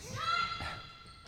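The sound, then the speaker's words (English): A basketball thuds against a hard floor, with a sharp bounce midway through, over a steady high-pitched tone and a murmur of background noise. “Hear that? It's a basketball bouncing.”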